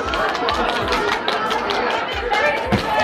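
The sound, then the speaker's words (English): Scattered clapping rings out amid the dense, echoing chatter of a crowded school cafeteria, sharp hand claps mixing with many overlapping voices and clatter; kids are clapping while the principal tells them to stop. “Really annoying, the clapping.”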